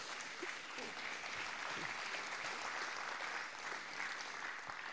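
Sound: audience round of applause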